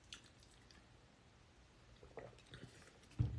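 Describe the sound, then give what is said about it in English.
Soft, wet chewing of gelatinous sea moss chunks in a green juice, with a few squishy, irregular bites and quiet pauses between them. Nobody speaks. “So many sea moss chunks.”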